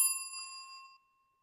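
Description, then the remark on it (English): A single bright notification ding rings out clearly on its own, a crisp bell-like chime that sustains briefly before cutting off after about a second, with no voices. “If you haven't already, please make sure to like, subscribe, and click the notification bell.”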